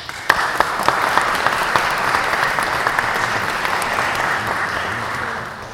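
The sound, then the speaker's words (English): A crowd applause sound effect played for a guest's entrance on a show: a steady wash of many overlapping claps with a few sharper hand claps standing out, holding level for several seconds before tapering off at the end, with no talking. “I mean, that was a grand entrance for such a disappointing person to have on your show.”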